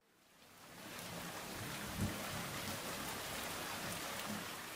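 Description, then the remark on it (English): Steady rain pours down outside a window in a dense, continuous hiss that fades in at the start, with a low rumble of thunder underneath and no voices. “It's raining right now outside my window.”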